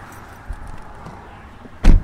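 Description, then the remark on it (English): The door of a maroon Nissan Sentra, used as a student driver car for a driving lesson, shuts with one solid thud near the end, after a soft click and a low, steady background rumble. No one speaks. “Gentlemen, you even opened the door for me.”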